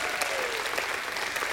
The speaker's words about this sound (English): Give God a hand clap and a shout of praise this morning.